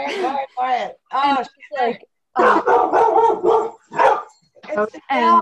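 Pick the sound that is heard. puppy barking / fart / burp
puppy barking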